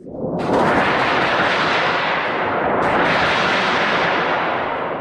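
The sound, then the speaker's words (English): A thunder sheet, a thin stretched sheet of metal shaken to imitate thunder, rumbles continuously for about five seconds, a loud, dense roar with broad crackling wash that swells in at the start and surges again midway, no voices present. “It was a thin sheet of metal that was stretched out, and you could shake it or you could strike it with a mallet, and it would imitate the sound of thunder.”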